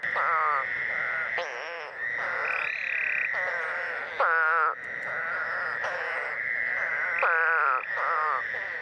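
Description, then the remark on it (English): A dense chorus of North American toads with cat-like vertical pupils, loud, with strange nasal, bleating calls overlapping continuously for the whole stretch, some rising and wavering above the steady droning mass. “That makes them stand apart from all other frogs and toads in North America.”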